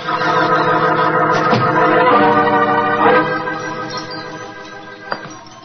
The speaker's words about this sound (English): There was a tinkle of Chinese wind bells as I walked towards a long, low room.